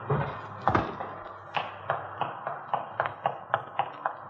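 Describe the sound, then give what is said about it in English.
A jammed car door is wrenched and banged as someone tries to force it open, a dozen or so sharp thuds in a quick, fairly steady rhythm, over a low background hum. “The door's stuck. Can you get the front one open?”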